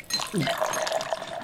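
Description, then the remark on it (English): Whiskey and water pours steadily into a glass for about a second and a half, a splashing fill with a faint clink, while a brief murmur of voice sounds near the start. “Whiskey and water. Make it a double.”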